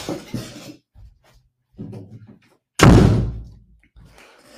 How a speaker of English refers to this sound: One second. Actually, I want to close that door. It looks kind of ugly there. One second.